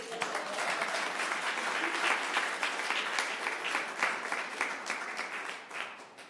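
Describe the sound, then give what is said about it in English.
An audience applauds a poet steadily for several seconds, a dense wash of many hands clapping at an even loudness before thinning slightly at the end. “All right, applaud the poet.”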